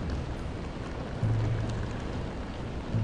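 Steady rain pattering against the glass dome of a two-story cylindrical gallery, a dense, even hiss of drops with a faint low hum underneath, continuous throughout.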